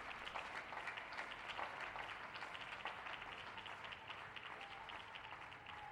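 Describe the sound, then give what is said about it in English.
Many people clapping together for frontline workers who keep society running, in a steady, continuous wash of applause that holds for the whole stretch, even in loudness, with no talking over it. “And we do the clapping now for the all-front line Keep Society running.”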